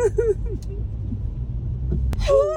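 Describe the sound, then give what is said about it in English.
A car's engine rumbles low and steady as it creeps slowly along, while voices exclaim briefly over it at the start and end. “My Mazda wouldn't have made it through this.”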